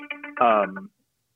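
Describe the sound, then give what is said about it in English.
A cell phone ringtone plays a quick electronic jingle: a few short tonal beeps, then a louder, buzzy sustained note before cutting off into silence, lasting under a second. “Was that the Bionic Man? It's my cell phone.”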